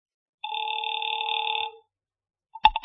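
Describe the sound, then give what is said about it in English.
A single steady electronic telephone ring, a little over a second long and fairly clear, after a number is dialed on a dial telephone. It is followed after a short pause by a few quick clicks, like a receiver being lifted, as the call is answered at Pacific Seaboard Fidelity. “Mallard left, and I took the slip of paper he'd given me with Eyre's phone number on it, sat down by Amici's pet aversion, and doodled with the dial.”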